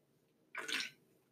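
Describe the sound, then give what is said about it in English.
A single short, wet slurping sip of LaCroix sparkling water from a can, a fizzy hiss lasting about half a second, heard alone with no talking. “Oh, I took a nice, good sip of my LaCroix.”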